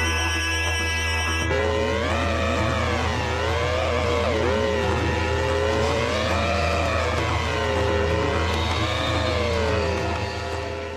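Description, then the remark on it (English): Motorcycle engines of the Gravediggers bikers in the 70s exploitation film Stone rev loudly and continuously, their pitch rising and falling in repeated waves over a steady low rumble, with no one talking. “Tonight, with the hands poised at 9 minutes to midnight, we rev our engines and head down under with the Gravediggers for Bonza Biker Brawl action in 70s exploitation favourite Stone.”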